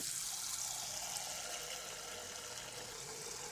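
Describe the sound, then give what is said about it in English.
Water pours steadily into a pot or kettle to be boiled for rice, a continuous splashing hiss with no pauses and no one talking. “Right, now I'm getting some water boiled, ready for the rice.”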